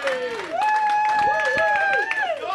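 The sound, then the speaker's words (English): A short burst of scattered hand claps for the game British Bulldog, mixed with voices, a steady high-pitched voice holding and sliding a tone above the claps throughout. “Marco Polo gets nothing and British Bulldog gets a clap.”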